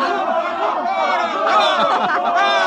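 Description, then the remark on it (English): A dense, excited fiesta crowd in a plaza yells and cheers for a papier-mâché bull, many overlapping voices forming a steady, loud roar that swells slightly midway and carries on without pause. “Mr. and Mrs. William Travis stood on the edge of the yelling crowd, smiling.”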